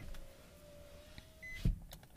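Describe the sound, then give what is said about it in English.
Car power windows whir closed with a steady motor hum inside the cabin, ending in a solid thump as the glass seats, followed by faint road noise. “I'm going to get these windows, sorry.”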